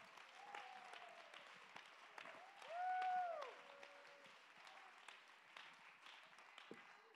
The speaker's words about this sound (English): Do it again. Do it again. One time's not enough. One resurrection is not enough. There's got to be many resurrections. Clap your hands and give God the glory.